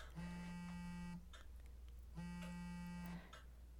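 A phone buzzes twice with an incoming call in a steady pattern, each harsh vibrating burst lasting about a second with a pause between, fairly loud, no voices.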